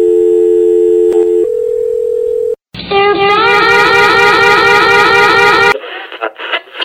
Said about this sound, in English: Listen as the dial tone hummed your heartbeat.